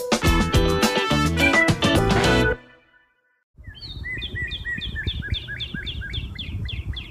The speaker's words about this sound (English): Anybody recognize what kind of a bird that was? I'll tell you, it happened to be this most incredible cardinal that landed in a tree right above us as we were in our backyard just the other day.